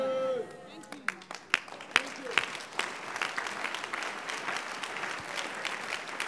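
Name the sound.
audience clapping and applauding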